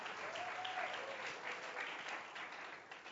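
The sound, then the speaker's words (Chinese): A group of people, having just read a passage aloud together, applaud themselves. They clap together in a steady, dense burst of applause that holds for a few seconds, then starts to thin and fade toward the end. “你们念得非常好，很少听见你们念得这么好，所以给你自己一个掌声好不好？”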